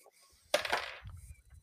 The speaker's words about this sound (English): I've got my dice cup to randomize it, so you know I ain't cheating with this roll. Let's see.